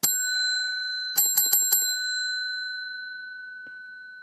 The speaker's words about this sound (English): I put the bell away too soon.